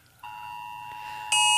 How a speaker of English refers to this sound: Wow, a national alert. Sorry, we're in the station, and there's a national alert going off on everybody's phones right now. Sorry about that.